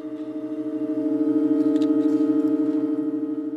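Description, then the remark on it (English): A church organ in Halberstadt, Germany, changes chords for the first time in exactly two years, holding a steady, loud chord of stacked sustained tones, with a faint pulsing low note beneath and a few brief upper-register flickers as the chord shifts. “Which was an organ changing chords for the first time in exactly 2 years.”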